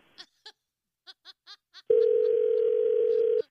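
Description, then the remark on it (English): A few short vocal bursts, like chuckles, come first. Then a sharp click as a telephone call is hung up cuts to a loud, steady telephone dial tone that hums for about a second and a half before stopping abruptly. “Hey, listen to the click.”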